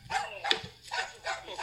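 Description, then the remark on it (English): A dog barks in a quick series of sharp, yappy barks, about four in under two seconds, moderately loud with no talking. “Listen to the dog barking.”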